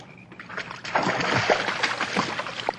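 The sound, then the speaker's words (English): Oars of a rowboat dip and splash through water in a steady run of sloshing strokes as the boat is rowed to pick up birds, with brief sharper splashes standing out over a continuous watery wash and no voices. “Now lift your right oar and I'll pick up the bird as we go by.”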